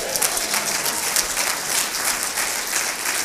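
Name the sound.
audience hand clapping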